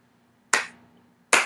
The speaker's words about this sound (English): Well, I was doing a clap. You're supposed to go along with it.